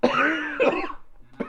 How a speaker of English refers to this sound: Oh, by the way, everybody, I have a cold, so I'm going to start coughing soon. And now will be the first time.